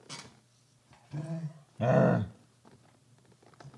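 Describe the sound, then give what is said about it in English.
A dog barks twice: a gruff, growly first bark, then a louder and fuller second one, with quiet pauses around them. “Or if you don't want to cuddle, then let me work, dog.”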